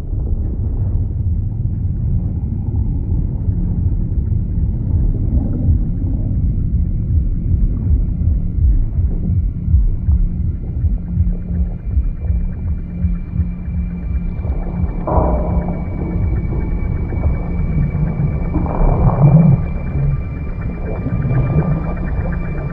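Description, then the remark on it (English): A deep, rumbling sound design of the ocean floor that throbs with a steady low pulse, with whale-like moans and tonal swells rising over the murky drone. No one speaks. “there's all these wonderful sound design elements that make that ocean floor and that environment down there almost seem like it's pulsing and it's a live thing down there.”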